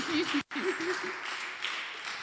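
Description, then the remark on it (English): A crowd claps steadily for Jesus, a dense wash of many hands applauding together, with a brief gap near the start and faint voices mixed under the clapping. “Clap for Jesus.”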